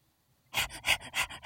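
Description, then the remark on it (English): A voice imitates a crocodile panting: after a brief quiet moment, four quick, breathy huffs come in a steady rhythm, fairly loud, with no talking. “Crocodile's panting.”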